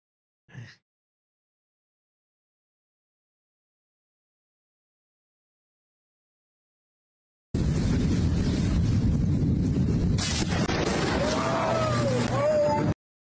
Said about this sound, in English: Nah, smoke. Smoke, smoke, smoke coming off the exploding transformer.